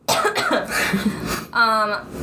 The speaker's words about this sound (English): I'm about to cough.